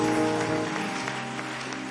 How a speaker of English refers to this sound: Are you clapping or you are doing something like clapping? Increase that clap offering in the name of Jesus.